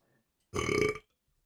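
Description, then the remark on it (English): A single loud burp lasting about half a second, rich and throaty, standing alone against silence with no talking around it. “Ooh, I think that was that was a good podcast burp there.”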